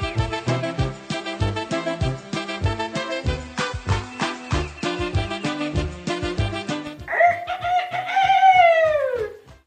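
Upbeat rhythmic music plays in a video from a mission trip, then gives way to a loud, drawn-out rooster crow near the end, its pitch holding and then falling away.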